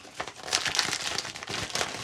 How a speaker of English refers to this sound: That's good crumpling. It's good. We can release an ASMR video. This is us opening graphically.